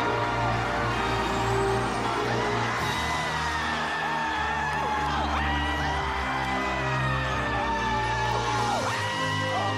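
A heavy bus engine rumbles steadily with hissing air brakes as the bus pulls away to reveal a house behind it, nearly drowned out by a loud crowd cheering and whooping throughout.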